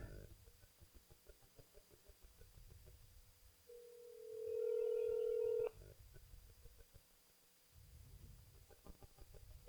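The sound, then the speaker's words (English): A single steady phone ringback tone sounds for about two seconds, loud and clear, between stretches of low, muffled talking before and after. “Answer, you bitch. Come on. Answer. Answer. I really want this to happen.”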